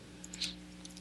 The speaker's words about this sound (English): Somebody's clicking their keyboard like they're playing World of Warcraft or something.